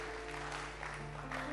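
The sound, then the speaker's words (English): An audience claps their hands in a steady, continuous wash of applause, with a low sustained tone humming underneath and no voices standing out. “Those of you clapping your hands, may it be well with you.”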